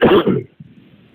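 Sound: coughing and throat clearing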